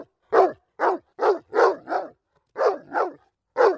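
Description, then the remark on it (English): A young, well-behaved puppy barks repeatedly, seven short yappy barks in a quick, uneven rhythm with brief pauses between them, loud and clear with no talking. “What an eloquent, fine young puppy dog.”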